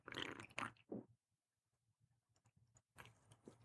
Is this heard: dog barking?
no